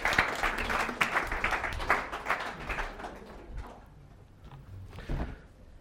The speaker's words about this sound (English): Give a big round of applause to Roy and to Crisaldo.